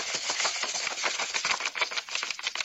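A rapid, continuous riffle of 8 playing cards being shuffled for a memory game, a dense flurry of crisp papery clicks lasting a few seconds, fairly loud with no voices.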